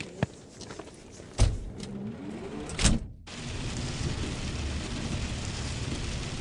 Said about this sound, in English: Do you think it's raining in Wellington? No. Just because it's raining in Taupo doesn't mean it's raining in Wellington.